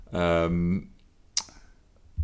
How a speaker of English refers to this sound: Any more? I've done that one. I'm just clicking on the same ones over and over, aren't I?